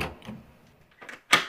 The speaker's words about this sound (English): Shut the door behind you, please. This door? Of course, that door.